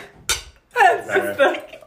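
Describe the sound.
A single dull, short tap of plastic cups knocking together in a toast, followed by people laughing and talking.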